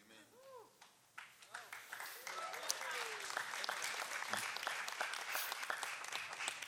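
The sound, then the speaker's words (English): A church audience gives Jesus a golf clap: a scattering of soft, polite claps starts sparse and builds into light, steady applause, with faint murmuring voices underneath and a few whoops or chirpy vocal sounds early on. “It was like a respectful golf clappity clap.”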